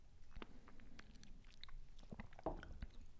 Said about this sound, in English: Now I'm going to take a little sip. Yeah. Now sip it. Sip it.